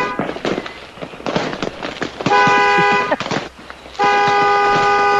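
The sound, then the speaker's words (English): A car alarm honks in two long, loud blasts, following a stretch of sharp crackling pops and bangs of fireworks being let off outside. “Yeah, he set my alarm off on the damn car.”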